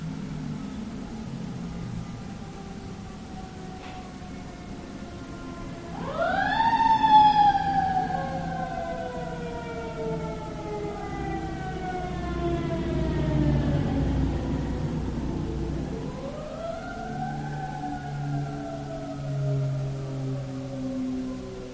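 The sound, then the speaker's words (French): A siren wails outside over a low traffic rumble, rising in sweeping tones from about six seconds in, fading, then rising again as the emergency vehicle passes. “Est-ce qu'il y a eu des sirènes? Oui, j'étais là, je les ai entendues.”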